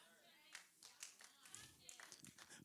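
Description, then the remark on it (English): Scattered, uneven handclaps from two people, fairly quiet, about a dozen sharp slaps over a few seconds with a faint voice murmuring underneath. “Two people clap.”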